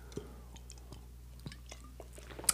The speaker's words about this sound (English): Okay, so we got some Corona and lime he freshly cut up for me, so did a nice little flippy-do on that and sipping away. It's awesome.